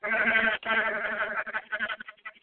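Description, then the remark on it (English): A goat bleats loudly in a long wavering cry, breaks briefly, then continues with a series of shorter, trembling bleats that trail off. “I had to sacrifice a goat because we kept mentioning Octavia Butler's name”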